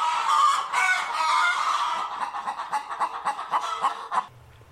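A rooster crows loudly in a long, strained call, then a flock of chickens breaks into quick, rhythmic clucking that fades out at the end. No one speaks.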